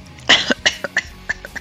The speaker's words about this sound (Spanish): Un momento, que voy a toser. Me voy a mutear.